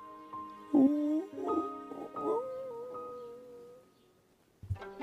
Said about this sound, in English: After a while, she heard a low, sad howl.